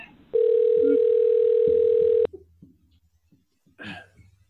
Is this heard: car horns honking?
no